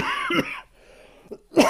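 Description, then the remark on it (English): Two harsh coughs from a person who has had a lingering cough for two to three months, separated by a short quiet pause, the second one louder and more forceful, with no talking in between. “Yeah, I've had this cough, it feels like, 2 to 3 months.”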